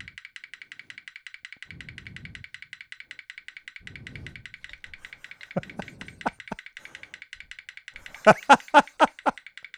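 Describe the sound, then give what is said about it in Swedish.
Sharp metallic clicks from the tab of a Celsius drink can being flicked, a few scattered snaps followed by a louder quick burst of five or so, over a steady rapid ticking and brief low murmurs. “Du har någon Celsius som du klickar på.”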